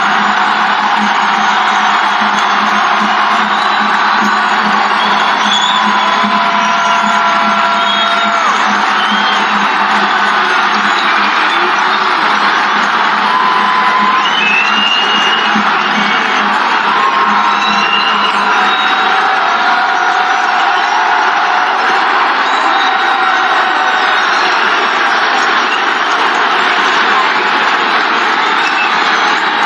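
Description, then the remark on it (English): A baseball stadium crowd at a White Sox game cheers and applauds Liam Hendricks's return less than five months after his cancer diagnosis: a steady, dense roar of clapping and voices that stays loud and unbroken for about half a minute, with no one speaking over it. “You don't have to be a fan of the White Sox to be on your feet to applaud what this appearance means.”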